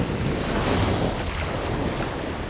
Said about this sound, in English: Nope, just the ocean.